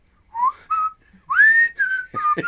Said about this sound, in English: I want you to do a whole spin cycle whistling with him.